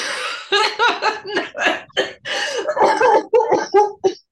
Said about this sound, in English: Sorry, I still have a cough